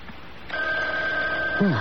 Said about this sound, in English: What's that? Oh, it's the phone ringing, Mother. Oh, answer it. It sounds so far away.